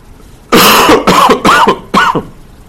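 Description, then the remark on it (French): A run of four loud coughs in quick succession, the first the longest and harshest, each burst rough and throaty with a brief pause between, and no talking. “je peux te donner un petit peu de place à ça, à l'ouïe, aux mains, à la respiration, à la lourdeur du cœur, à la toux.”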